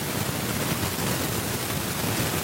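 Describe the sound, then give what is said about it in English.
A steady, dense static hiss from a call participant's microphone fills the whole clip, sounding like sudden rain pattering, constant in level with no pauses and no voices. “Ooh, there is like a sudden rain I can hear.”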